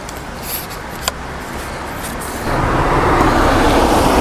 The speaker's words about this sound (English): I've just got to wait for the right time when there's no cars, or maybe when there is cars, like now. Yeah, I'm going to do this with cars. He said just as three cars came and went